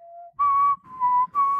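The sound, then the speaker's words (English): Someone whistles a short TV theme tune into a microphone, a low opening note followed by three higher sustained notes with brief gaps, each carrying a breathy, airy rush. “Yeah, whistling into a microphone, not the best.”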